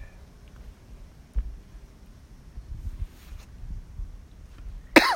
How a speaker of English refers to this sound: That was a strong cough. It was. Damn. But it wasn't though. It was like a caught off guard. You ever like get one that catch you off guard? Like, yeah. It's not aggressive, but it come out sharper than you expected to.